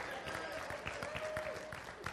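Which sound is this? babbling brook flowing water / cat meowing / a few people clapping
a few people clapping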